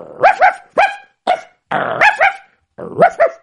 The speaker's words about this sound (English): And so he walked, and he eventually got to the big palace. And as usual, there were dogs by the gate.